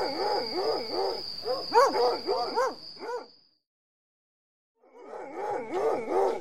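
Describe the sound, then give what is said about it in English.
Several of the General's hounds, set to search for a killer, bark and bay in quick, overlapping bursts, loud, then fall silent for about a second before the excited barking starts up again. “See if your hounds can find anything.”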